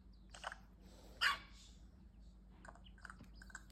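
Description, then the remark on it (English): A virtual pet dog in a Nintendo 3DS game gives one sharp, loud bark, with a few softer yips and chirpy sounds before and after over a steady low electronic hum. No one speaks. “I have 2 more slots for dogs to live in my house, but I'm saving the gain.”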